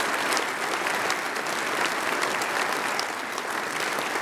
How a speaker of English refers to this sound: So we want you to give them a big round of applause as they come into this ministry.